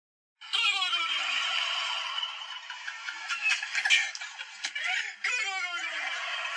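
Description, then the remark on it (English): A loud, dense chorus of turkeys gobbling together in a video played out loud, a rapid warbling babble from many birds at once that rises in waves and keeps going without a break for several seconds. “And all of those turkeys are now dead.”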